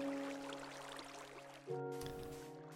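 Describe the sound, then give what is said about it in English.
Water pours and flows in a steady rush with a faint hum beneath. Partway through, the tone shifts lower and fuller as the flow changes. No one speaks. “Let me get the water in.”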